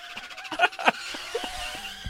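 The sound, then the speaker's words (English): A car's brakes screech in a short, shrill, loud squeal lasting about two seconds, with a couple of sharper bursts near the start. No one speaks. “Hit the brakes.”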